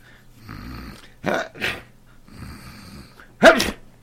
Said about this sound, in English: Gesundheit. Thanks.